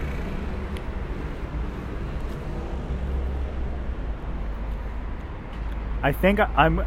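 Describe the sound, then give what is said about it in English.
Road traffic rumbles past in a steady, low, continuous wash of engine and tire noise, moderately loud, and a voice briefly speaks over it near the end. “Traffic!”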